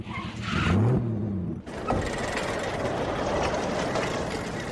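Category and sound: vehicle, car engine revving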